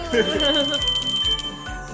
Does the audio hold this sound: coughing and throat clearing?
no